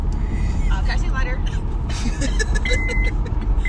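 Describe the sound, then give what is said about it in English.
Steady low road and engine rumble from inside a moving car in the early morning, continuous throughout, with muffled voices talking faintly over the drone. “Welcome to Club Car. That's what's going on now. We in Club Car”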